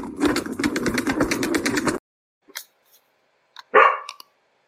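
A fast, steady rattling clatter runs for about two seconds and stops. After a short quiet gap, a dog gives a single sharp bark, with a few faint brief sounds around it.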